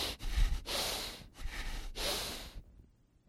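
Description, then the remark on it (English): Heavy, angry breathing through the nostrils: about four forceful, hissing snorts in quick succession, fairly loud, ending in silence. “And the other word for wrath is nostrils, which means the heavy breathing of God.”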